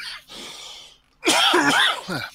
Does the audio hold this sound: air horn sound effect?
no